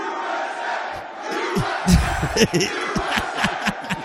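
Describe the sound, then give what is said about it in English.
A large crowd at SneakerCon Philly chants loudly in unison as Trump shows up, a rhythmic repeated shout with regular beats over a dense wash of crowd noise and scattered yells. “This man shows up and this is the crowd was saying at SneakerCon.”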